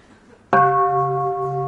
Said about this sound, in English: If the bell's too loud at the beginning, then it doesn't fade away nicely. The best part of the bell ringing is the fading away. Let's try it again.